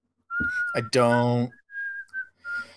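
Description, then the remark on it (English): A person whistles a few short, clear notes, with a brief burst of voice overlapping the start of the tune. “I don't like it when people whistle in public.”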